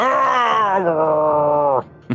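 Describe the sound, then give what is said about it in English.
A human voice imitates a zombie with one long, loud, droning moan that sags slightly in pitch before cutting off abruptly, followed by a short breathy grunt. “Stretching out in your direction, they moan as they come at you in the darkness.”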